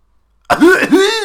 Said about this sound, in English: they were more forgiving of his irritating coughing if he made the coughs funny